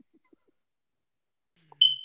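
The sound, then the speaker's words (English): A single short, high-pitched electronic chirp, like a smoke detector's low-battery warning, sounds sharply near the end after a stretch of near silence, with a faint low rumble beneath it. “I'll just try not to talk while it's chirping.”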